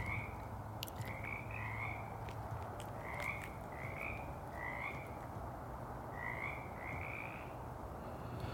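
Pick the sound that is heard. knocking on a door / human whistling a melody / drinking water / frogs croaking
frogs croaking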